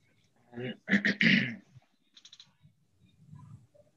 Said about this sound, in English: You just clear your throat just because, or did you have something to say? I had something in my throat, but, you know, I'll say something.